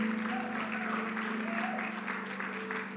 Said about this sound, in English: Let's give them one more hand clap. We appreciate that.